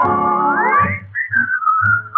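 A person whistles a bright, sustained melody, sliding up to a high note and then holding short tuneful phrases, with low thumping accompaniment pulsing underneath.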